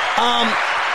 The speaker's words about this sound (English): Get a round of applause.